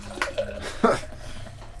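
Water splashes and swirls inside a glass at close range, a couple of quick sloshing bursts over a low background hum, with no talking.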